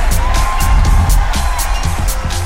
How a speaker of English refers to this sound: Wow, what an incredible opening to Telstra Vantage 2017. Please, another massive round of applause for the star of the show, Jessica Irwin.